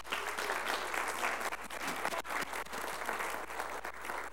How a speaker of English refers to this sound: Round of applause